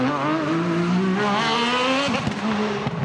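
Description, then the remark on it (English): An Alfa Romeo 155 DTM race car engine screams at high revs, pitch climbing steadily through a gear before a quick shift and another rising howl, loud with no talking. “Let's jump over to Europe, the Alpha 155 DTM car.”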